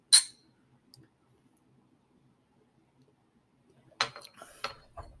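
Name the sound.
glasses clinking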